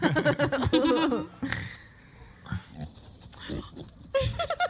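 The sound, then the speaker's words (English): A voice imitates a pig with loud, snorting oinks and squeals in quick bursts, followed by quieter grunting snuffles, then another loud burst of vocalizing at the end. “Oh, my God. Pig.”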